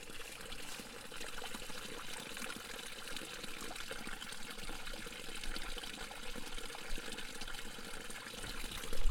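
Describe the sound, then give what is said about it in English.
Steady, continuous rush of water pouring from the ground nearby, a natural stream flowing from a steep head ravine on private property on the Florida coastal plain, a broad hissing trickle and splash that holds at an even level throughout, with no voices. “You can clearly hear the water pouring out of the land next to me.”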